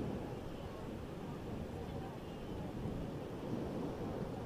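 A steady, broad wash of surf on a shore, with low rumbling wind buffeting throughout and no clear breaks between waves.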